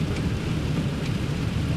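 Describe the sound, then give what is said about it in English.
Steady rain pours continuously, a dense wash of hiss over a low rumble, with a couple of sharper drop spatters standing out briefly. No one speaks. “Oh, I can hear the rain.”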